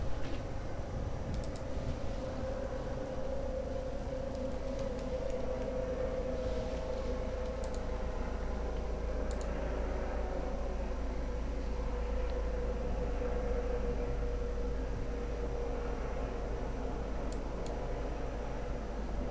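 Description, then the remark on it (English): A medical helicopter drones steadily overhead as it goes by, its deep, constant rumble filling the background with broad engine noise and occasional faint clicks, with no voices. “Yeah, that's just a medical helicopter.”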